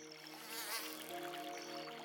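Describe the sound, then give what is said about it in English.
Mosquitoes whine in a steady, high-pitched buzz that drones on without a break, fairly quiet, with no voices or other sounds around it. “Down in the muggy swamplands of North Carolina, the settlers would have come into contact with a high volume of mosquitoes that may have carried disease.”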